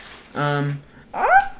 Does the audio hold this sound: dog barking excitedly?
yes